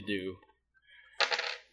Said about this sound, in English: I roll a d12.